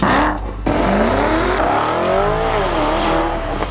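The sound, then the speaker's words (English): A 2020 Porsche Spyder sports car engine revs loudly, its pitch climbing and falling through gear changes in a continuous, throaty roar with no voices present. “The 2020 Porsche Spyder, the official car of the Final Round Pinball Podcast.”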